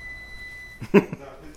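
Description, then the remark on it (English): A dishwasher gives one steady, high-pitched electronic beep that holds for nearly a second, then cuts off as a short burst of someone's voice follows. “Something's beeping. I don't really know what that is. Whether it's the dishwasher or some other thing.”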